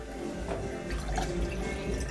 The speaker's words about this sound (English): I'm pouring more coffee.